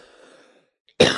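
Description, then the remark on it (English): A single loud cough bursts out abruptly near the end, following a stretch of faint low background murmur and a moment of near silence. “I coughed.”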